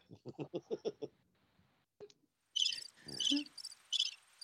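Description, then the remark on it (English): Crickets chirp in rapid, shrill bursts that repeat steadily, following a brief series of lower pulsing calls and a short pause. “Oh, it's your crickets.”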